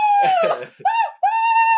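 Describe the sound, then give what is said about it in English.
A person imitates a scream with their voice: a rough, strained burst, then two long, steady, high-pitched wails separated by short breaks, all loud and unaccompanied by other sounds. “It wasn't a scream like I have a hose in my mouth.”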